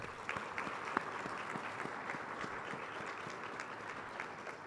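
A steady round of applause from a crowd at a fundraising event, thanking an organizer who handled tickets and fundraising. Many overlapping claps form a dense, even patter that holds at a moderate level throughout, with no voices.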